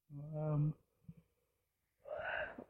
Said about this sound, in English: Oh my goodness. We're like yawning all over.